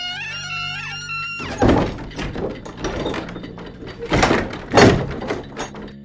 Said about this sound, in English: I have my cigar trimmer. At last a worthwhile use for that beastly device. The door. Prise it open.